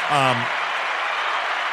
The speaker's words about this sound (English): That deserves some of that right there. Another applause.